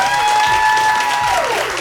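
A crowd applauds their Twitch stream moderator loudly and steadily, a dense wash of clapping throughout. A thin high tone holds underneath, then glides downward near the end.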